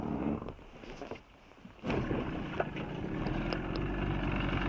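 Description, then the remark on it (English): A dive boat's engine kicks in after a brief lull as the boat sets off to pick up a group of divers. It keeps running with a steady, loud low rumble and a throbbing texture, with no voices. “Get the engine started.”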